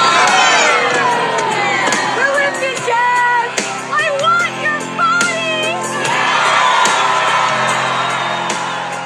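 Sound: crowd cheering and yelling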